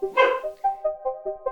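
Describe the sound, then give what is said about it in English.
A female dog barks once sharply at home, then lets out a quick, evenly spaced run of short, high whining yips, with no one talking. “my dog, Jess, is barking, so I apologise if she barks”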